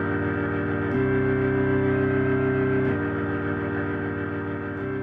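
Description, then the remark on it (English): A low, sustained organ drone hums steadily with a dark, eerie tone, shifting to a new chord every couple of seconds. It stays loud and unbroken throughout, with no voices. “The organ has a drone there, it just goes real low and kind of spooky.”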